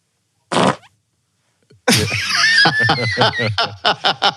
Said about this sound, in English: Yeah, now I have a fart folder on my computer. Hold on. Fart stereo mix number 6.